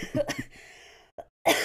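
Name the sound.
cough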